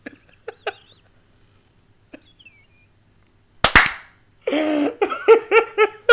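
A single sharp hand clap cracks out after a few quiet seconds, with a brief noisy tail, and then voices break in with loud, choppy, laugh-like bursts.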